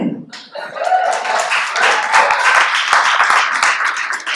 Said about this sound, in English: Coming up first, and you better clap for this one. You know, I'm not gonna tell you why.